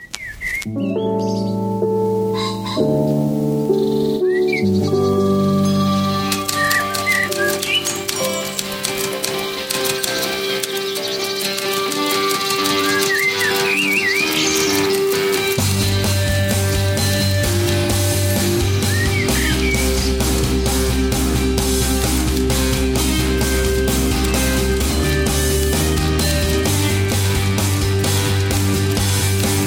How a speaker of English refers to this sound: And this one still has that, it has an alt rock vibe to it, but I think is more, it's a little more, I don't want to say thoughtful, but it's a little bit, it's a little less like overly sunny. So here's this one.